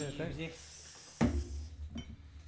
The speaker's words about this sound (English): Got to change the glass here.